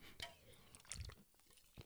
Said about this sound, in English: Let me just take a real quick sip.